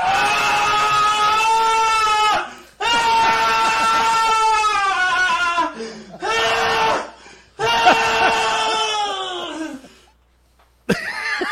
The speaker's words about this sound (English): No, this is... It's this, and it's like some random... Like royalty-free scream sound. It's this.